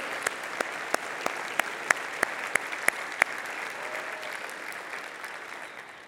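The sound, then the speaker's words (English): A crowd applauds and cheers for the standing Chi Alpha group members, Chi Alpha missionaries and National Chi Alpha staff. A run of sharp, evenly spaced claps stands out over the first half, then the clapping continues as a dense wash and eases slightly at the end. “We'd just like to cheer you guys on.”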